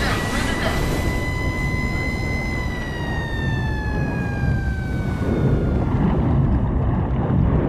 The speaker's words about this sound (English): Launching all hands into action, diesel engines roar to life. Watertight doors slam home and ratchet close.